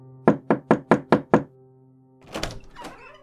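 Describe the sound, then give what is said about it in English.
Six quick, even knocks rap on a wooden door, fairly loud, followed after a short pause by a muffled rustle or shuffle of movement. “Xander takes a deep breath and knocks on the door.”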